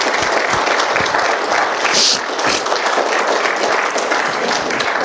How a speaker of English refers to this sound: And so if you will, give him a round of applause this morning.